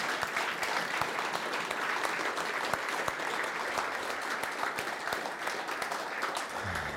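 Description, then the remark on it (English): Steady, sustained applause from an audience for a crew about to take part in a service with prayer and baptisms: a dense wash of many hands clapping at a constant level for several seconds with no talking. “Hey, family, I think we need to give this crew right here a big round of applause for what they're about to do.”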